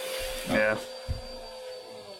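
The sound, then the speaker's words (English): A roommate's vacuum cleaner drones steadily in another room, a faint, muffled whine that holds throughout, broken by a couple of brief louder bursts. “Oh, what was that noise? One of my roommates is sucking himself off with a vacuum, I think.”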